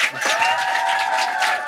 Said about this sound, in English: Now, first off, give yourselves a round of applause for making it out to the show.